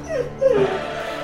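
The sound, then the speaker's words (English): A dog trying to get in whimpers and lets out a couple of high, thin yips, the whining pitch rising and falling over a second or so against a soft background hum. “There's only a matter of time when this dog he's breaks trying to get in.”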